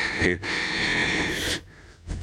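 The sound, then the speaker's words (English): Loud, heavy breathing with long, rough, hissing exhalations: a short puff, then a sustained breath lasting about a second, a brief pause, and another breath starting at the end. “Yeah, it didn't need the heavy breathing at the end of it.”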